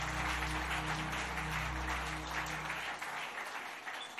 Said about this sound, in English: Glory be to God. Clap your hands, bless the Lord.